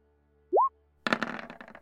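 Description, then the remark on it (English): A short rising digital bloop, then a burst of virtual 3D dice clattering and rattling for under a second as a wisdom roll is made, fairly loud, with no voices. “You have the 3D dice turned on, don't you?”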